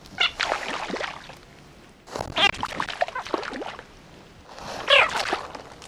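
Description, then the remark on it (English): A frog calls in three raspy bursts separated by short pauses, mixing low croaking with sharp, high-pitched chirping notes, with no voices present. “It's funny to me because you hear the first one and it's such a low, low sound, and then you hear this like high-pitched chirp.”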